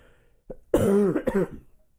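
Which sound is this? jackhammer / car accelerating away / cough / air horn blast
cough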